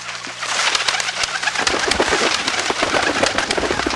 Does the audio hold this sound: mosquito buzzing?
no